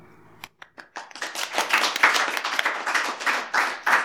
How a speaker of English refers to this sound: But if we give everyone a round of applause as well.